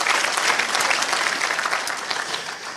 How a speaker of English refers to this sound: Come on, clap your hands and say amen.